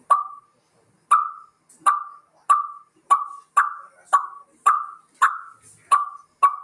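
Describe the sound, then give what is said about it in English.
A turkey call blown with too much air, an overblown cluck turning into a putt, giving a series of about eleven sharp, tinny putts at a steady, slightly quickening pace, each a brief bright note with a quick falloff, alone. “it gets more of a higher tinny sound, making it more of a putt, if that makes sense to you.”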